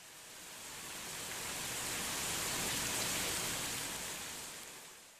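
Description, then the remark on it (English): Dense, steady hiss of heavy rain pouring down in early November, blown by a cold wind, swelling gently and fading at the edges, with no voices, just a continuous wash of falling water. “Soon it was raining quite heavily.”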